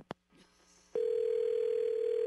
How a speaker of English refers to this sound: Oh, yes, you must have a faulty phone. We keep getting disconnected.